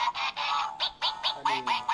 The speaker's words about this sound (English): I got a little duck over there that makes a whole bunch of noise. He's been here for a while and everything.